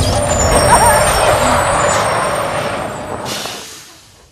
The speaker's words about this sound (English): Sir, stop the fucking bus. Sir, you can't hear me. I know, honey. Hey, hey. Pull over the fucking bus. Do it.